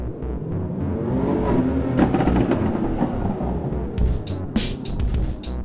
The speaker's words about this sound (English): All that was left to do was get back in my car, sit in traffic for a while, and drive. Same as I'd been doing all night.